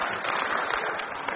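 An audience applauds together, a dense, steady wash of many hands clapping at once, bright and crackling, holding an even loudness throughout with no voices on top.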